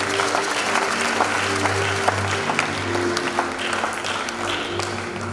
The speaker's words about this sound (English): I hereby say a very big thank you and well done to all the members of the LOC, all the staff of the CMDA Secretariat, especially the hardworking CEO, and a bigger thank you to all our sponsors and supporters. Let's give them a clap at this stage.